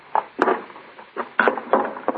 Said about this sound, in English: What are you going to do? Pry up those boards? Yes, they'll loosen up.